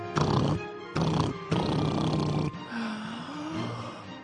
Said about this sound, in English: I think our big bad wolf is trying to build a tunnel underneath the house. He's using a jackhammer. Can you hear it?